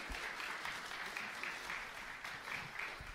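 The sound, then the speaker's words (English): A crowd applauds steadily, giving another round of applause to guests as they leave after sharing their stories; a dense wash of many hands clapping at an even loudness for the whole stretch, with no voices standing out. “You give them another round of applause as they're leaving.”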